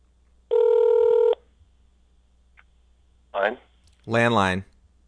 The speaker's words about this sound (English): Landline.